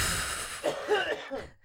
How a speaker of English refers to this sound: Ooh, I have to cough.